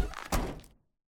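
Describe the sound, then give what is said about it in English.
A car door is handled: a brief rattling scrape, then a single solid thunk as it shuts, fading quickly into silence. “They had listened to the footsteps traversing the drive and had heard the car doors open and shut, but no ignition had fired.”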